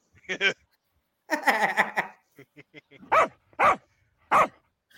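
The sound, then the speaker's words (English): A dog lets out three sharp, evenly spaced barks near the end, loud, after a couple of short bursts of human vocal noise that sound like laughter. “Fucking dog.”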